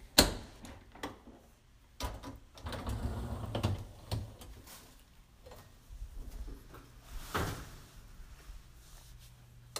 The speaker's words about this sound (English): Opening up the dishwasher.